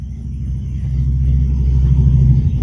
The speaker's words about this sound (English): I was just watching the motorcycles go there by. There are so many motorcycles tonight. So many motorcycles.